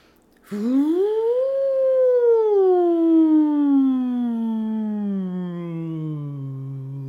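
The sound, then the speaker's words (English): A single long voiced buzzing hum on one exhale during a guided breathing exercise, rising quickly in pitch, then sliding slowly downward for about six seconds, steady and fairly loud with no talking. “And again, this time, let something buzz.”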